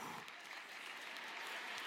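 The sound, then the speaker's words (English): An audience in Plymouth claps steadily during a talk, a dense wash of many hands at an even, fairly loud level throughout, with no voices standing out. “Hey, Brighton, were you clapping just now? Because Plymouth was.”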